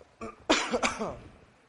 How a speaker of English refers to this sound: All right, excuse me if I cough. I have been fighting something.